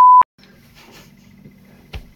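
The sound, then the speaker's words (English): A single loud, steady censor bleep over a spoken name cuts in at the very start and stops abruptly, followed by a low background hum and faint shuffling, with a soft thump near the end. “I have to keep beeping that out.”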